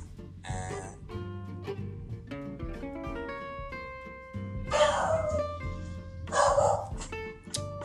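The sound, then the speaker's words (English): A dog barks in three loud, separate bursts, the last two close together, over a steady humming background with no talking. “Again, I have to go deal with the psychopath of a dog.”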